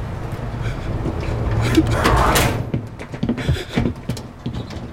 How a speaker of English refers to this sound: Close the door.